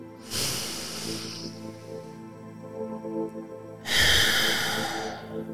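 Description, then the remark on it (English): A deep breath drawn in with a long, airy rush, a short pause, then a strong breathy exhale, taken with eyes closed during a guided relaxation breathing exercise. Both are clear, with no talking. “One more big deep breath.”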